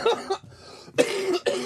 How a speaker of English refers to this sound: Every time you laugh now, you cough. You're going to die.